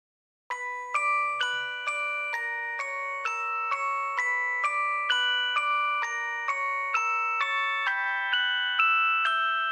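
A phone ringtone plays a repeating electronic melody of bright, bell-like tones, each note struck in a steady rhythm with rich harmonics, continuing without pause and no talking over it.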